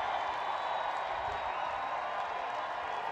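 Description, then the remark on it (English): A large concert crowd cheers and applauds for an encore without pause, a dense, steady roar of clapping and voices holding at an even, loud level throughout. “That crowd won't stop. Can't stop, won't stop.”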